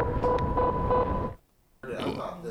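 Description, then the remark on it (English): A man hums a steady, droning tone for over a second over a rough, rumbling background, then a short silence before a voice starts talking. “That we heard a female voice at the time, but that sounds like a male humming.”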